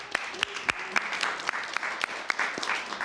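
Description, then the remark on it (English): An audience applauds steadily for a few seconds, a dense wash of many hands clapping with sharper individual claps popping out above it at moderate volume. “I want to celebrate the folks who did come and who are still here, so we'll give you all a round of applause, please.”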